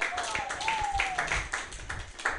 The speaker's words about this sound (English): Can we get a round of applause? Thank you.